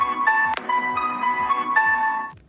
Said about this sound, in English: Those sound effects, free to you, because I forgot to turn off my text notifications.